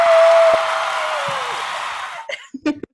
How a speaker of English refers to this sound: The crowd is cheering.